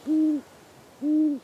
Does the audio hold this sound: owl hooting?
yes